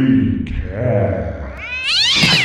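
A cat meows in a long, drawn-out wail that rises sharply in pitch toward the end, loud, with no talking.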